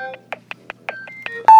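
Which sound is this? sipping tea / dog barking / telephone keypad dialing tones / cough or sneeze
telephone keypad dialing tones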